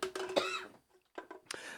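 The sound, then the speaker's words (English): A harsh cough with a rough, throaty rasp from someone who came back from vacation ill, followed after a short pause by a couple more sharp, shorter coughs. “I came back from vacation with something, listeners, so if you hear me coughing to the side, that's why.”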